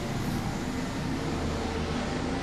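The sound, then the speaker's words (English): A helicopter flying by in a residential neighborhood: a steady, loud low-pitched rotor drone with a broad rushing wash over it, continuous for a couple of seconds with no one speaking. “So we just had a helicopter fly by.”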